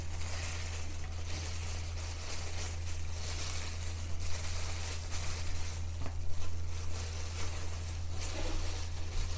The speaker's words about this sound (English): Think I could listen to this all night. Fans wrapped in paper.